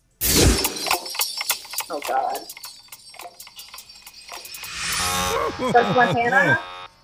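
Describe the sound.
A harsh, crackling game show buzzer in a radio quiz contest blares in loud, jagged bursts, then gives way to a voice with swooping, sliding pitch near the end.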